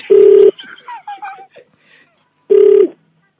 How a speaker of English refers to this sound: It's call forwarding.